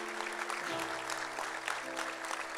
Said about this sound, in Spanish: Y la realidad, damos ese aplauso al Señor, damos.